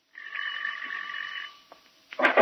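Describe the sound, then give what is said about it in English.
A bell rings with a bright, steady tone that holds for over a second before fading, then a sharp, loud clatter bursts in at the end. “Ring the bell, Patsy.”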